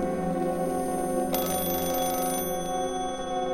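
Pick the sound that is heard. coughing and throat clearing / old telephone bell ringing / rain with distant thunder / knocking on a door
old telephone bell ringing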